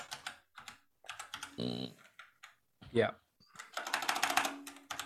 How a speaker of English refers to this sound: keyboard is so aggressive as well. My fingers are very aggressive. The keyboard's very placid.